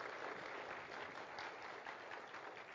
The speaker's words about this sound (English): I'm going to ask any of the youth or the youth sponsors who helped out at March for Babies last week to stand up, please. A round of applause, please.